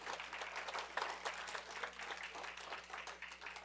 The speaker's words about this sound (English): Are you with me today? Come on and give him a hand clap of praise up in here.